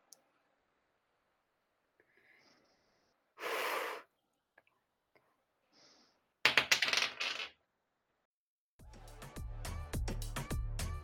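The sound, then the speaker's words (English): A six-sided die (d6) is rolled, clattering and tumbling across a table in a brief burst of hard rattling clicks, after a soft rustle, followed by music starting up. “And if it is a, before you roll it, if it is a 2, you're going to hit the right one. So now roll it.”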